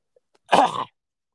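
A single cough, a short harsh burst lasting under half a second, preceded by a couple of tiny clicks and followed by silence.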